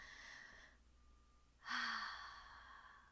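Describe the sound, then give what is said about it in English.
A single deep breath taken by the speaker, fairly loud: a breathy inhale, a short pause, then a long audible sigh of an exhale that fades out slowly. No talking. “I feel like I need to take a breath because I think I'm talking too fast.”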